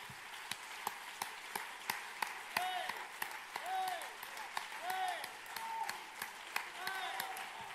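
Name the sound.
audience clapping hands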